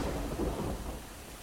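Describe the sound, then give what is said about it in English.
A thunderstorm with steady rain, a low rumbling roll of thunder under a broad hiss of rainfall, continuous with no voices. “We got interrupted by the rain there, which is an exciting thing for all of us.”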